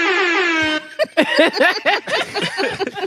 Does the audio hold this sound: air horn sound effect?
yes